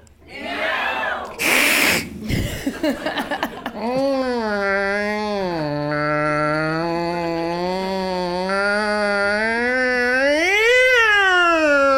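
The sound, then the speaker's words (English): After a few seconds of laughter and scuffling noise, a voice lets out one long, drawn-out meow imitation that wavers up and down in pitch and swoops higher near the end. “But a strong meow, less apathetic.”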